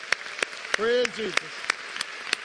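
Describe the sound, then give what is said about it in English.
A church audience applauding all of the mothers, with crisp claps landing in a steady, even rhythm over a dense patter of hands. Partway through, a voice briefly calls out over the clapping. “Let's, again, applaud all of our mothers.”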